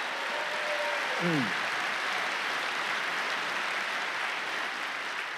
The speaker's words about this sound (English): Clap your hands and praise God if you believe it.